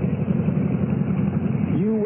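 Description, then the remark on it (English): A motorbike, pulled up on a road at a rise over an old abandoned single-track railroad, idles with a steady, low, rumbling drone that holds even throughout, and a voice briefly rises over it near the end. “Oh, I could have run you down with my bike just now.”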